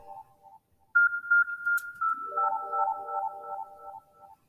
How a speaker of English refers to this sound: Stop giving me notifications.